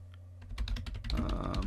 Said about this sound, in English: Typing now.